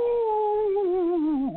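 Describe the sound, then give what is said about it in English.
A person imitates a coonhound's bay, a hunting dog in the woods that has smelled a raccoon, with one long, drawn-out howl that holds steady, then slides downward and breaks off at the end. It is loud, with no other sounds. “He said, and here in a minute, one of them dogs smelled a coon.”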